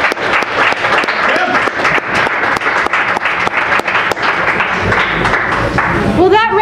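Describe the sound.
A crowd applauds steadily, dense overlapping claps forming a loud continuous patter with a few cheers mixed in, and a voice begins speaking as the clapping carries on near the end.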